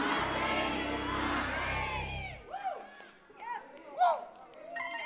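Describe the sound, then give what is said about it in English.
A large crowd loudly shouts the words "my thing is my thing" together for a couple of seconds, a dense roar of many voices that cuts off abruptly, leaving a few scattered individual voices calling out afterward. “I want you to throw your head back and scream these words, my thing is my thing.”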